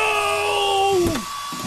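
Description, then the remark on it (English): A portable hairdryer runs with a steady whirring hum and a high motor whine, then its pitch slides down as it winds off near the end. No one speaks. “Not my portable hairdryer.”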